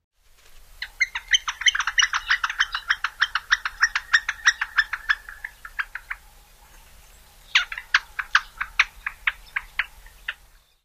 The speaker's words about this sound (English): When birds are close together or near a nest, they also give a softer wicka wicka wick call.